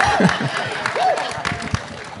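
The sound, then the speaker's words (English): An audience at a Comic-Con convention claps steadily for two guests in a dense wash of applause lasting a couple of seconds, with a few cheering voices and whoops rising over the clapping. “So a nice little round of applause for these two wonderful human beings.”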